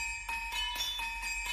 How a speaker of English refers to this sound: If I remember correctly, we started with the bell sounds, right? Yeah, those in the intro there. Ding dong dong ding ding dong dong.